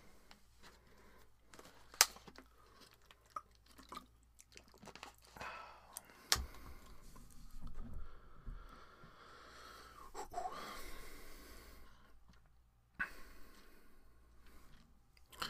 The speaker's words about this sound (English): As I sip a little bit of water very quickly.